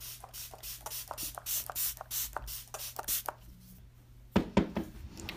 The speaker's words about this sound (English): So I'm going to go ahead and use Mac Fix Plus if I can get this open. So this is my Prep and Prime spray bottle. It's my OG. Very first expensive makeup I ever bought.